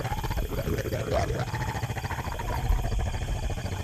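Three hostile wolves snarl and growl together in a camp at night, a low, rough, continuous rumble that stays steady for a few seconds, with no one speaking over it.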